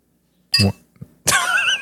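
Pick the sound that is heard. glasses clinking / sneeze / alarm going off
glasses clinking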